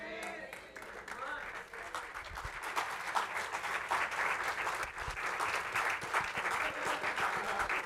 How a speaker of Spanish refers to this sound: Aplauso de golf, ¿verdad?